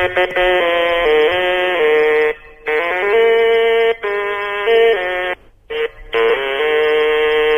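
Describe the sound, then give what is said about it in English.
A short, buzzy jingle played on a stylophone by a caller over the phone, with reedy electronic notes stepping up and down in a simple tune. It plays loudly in a few phrases separated by brief pauses, with no talking. “Are you playing that on a stylophone? It was played on a stylophone, yes.”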